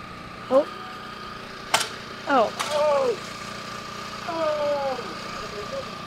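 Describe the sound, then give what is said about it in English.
A shovel smacks hard against concrete twice, sharp, about a second apart, as a team tries to kill an escaped rat, over a steady engine drone, with brief voices calling out. “That was the sound of a shovel smacking the concrete as the team attempts to kill an escaped rat.”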